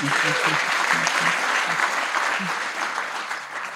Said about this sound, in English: Yes. You can clap.